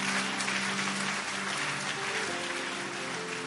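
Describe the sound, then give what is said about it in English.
A crowd claps steadily throughout, a dense, continuous wash of applause with no words spoken and a faint sustained hum of tones beneath it. “Are you clapping or you are doing something like clapping?”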